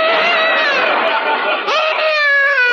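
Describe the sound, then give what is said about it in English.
A loud, continuous wail with strong harmonic bands, an infant boy crying, rising slightly in pitch with a brief catch of breath partway through before the cry resumes. “Boy, that kid sure squawks a lot.”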